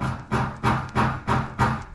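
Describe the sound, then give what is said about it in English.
Five heavy, booming bangs on a door land in a steady, rapid rhythm, roughly three per second, loud and with no voices. “Who's that banging on the door?”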